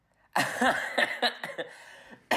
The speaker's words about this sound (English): Oh, God. That's a smoker's cough there. Gorgeous. Yeah. That's chain smoking bastard.